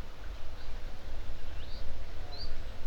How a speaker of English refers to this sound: Birds and stuff like that.